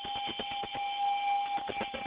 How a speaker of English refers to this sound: You get the new caller bell. So welcome to the show.